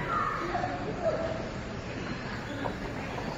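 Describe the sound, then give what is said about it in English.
A magic marker squeaks across paper in a few short, thin strokes during the first second as cartoons are drawn, faint against a steady background hiss. “That was the magic marker squeaking.”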